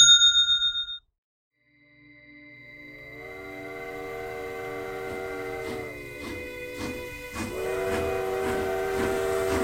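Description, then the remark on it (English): A steam train's whistle rises and holds a long, bright chord as the locomotive of a special four-car B&O Railroad train chugs with rhythmic chuffs and hiss, loud, after a brief ringing bell chime and a short silence; the train leaves Washington on November 18th, 1863. “On Wednesday, November 18th, 1863, the president left the White House for a quick trip aboard a special four-car train from the B&O Railroad.”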